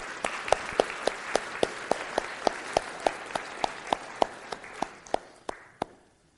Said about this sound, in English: and let's thank her with applause, all right?